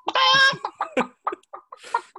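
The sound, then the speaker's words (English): Someone imitates a chicken: one drawn-out, nasal squawk, then a quick, uneven run of short clucks, fairly loud with no other talking. “I was pretending to do my little, I didn't get a chicken in.”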